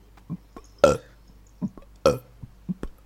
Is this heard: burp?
yes